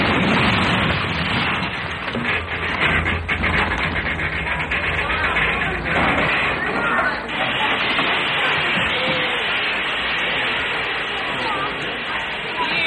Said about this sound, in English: What's the matter? Who pulled the emergency cord? Who stopped the train?